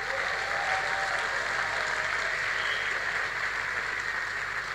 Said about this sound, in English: I thought you would clap your hand more.